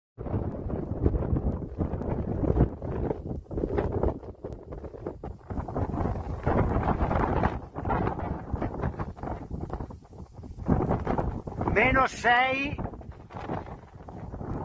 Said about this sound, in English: Italy, snowstorm in the mountains with lowest temperatures on record in midsummer.